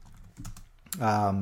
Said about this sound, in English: That's why you can hear me typing.